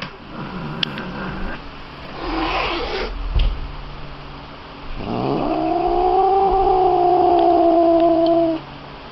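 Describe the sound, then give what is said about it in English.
A Bengal cat lets out one long, drawn-out, agitated yowl that wavers in pitch for several seconds, preceded by some rustling and a soft thump. No one speaks. “In honor of the Super Bowl, though, here is a Bengal cat being very upset.”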